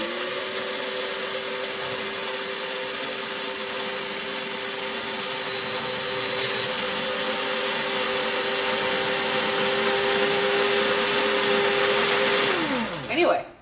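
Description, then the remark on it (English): A small Mr. Coffee electric coffee grinder whirs loudly and steadily for about thirteen seconds, its high motor whine holding constant before quickly winding down as it shuts off. “that is a Mr. Coffee Grinder, by the way.”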